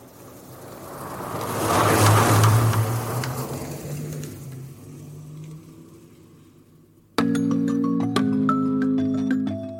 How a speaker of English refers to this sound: The car's getting closer towards you. And as it approaches, you hear music, just like a music video. And it's something like this.